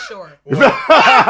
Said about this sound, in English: What she got? A cough? She ain't got a cough. She definitely ain't got a cough, boy.